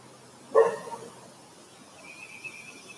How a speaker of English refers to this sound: Root shut up. Damn dog.